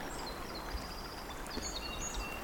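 A song sparrow sings faintly, thin high notes and short phrases drifting over a steady outdoor hiss with no one talking.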